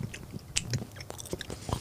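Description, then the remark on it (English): Close-up chewing right at the microphone, with moist crunchy bites and smacking mouth sounds in an irregular rhythm, several sharp bursts standing out over about two seconds. “Yeah, chewing in the mic. It makes it even that much louder and better.”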